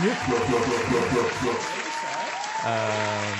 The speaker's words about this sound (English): Let me get a clap over here.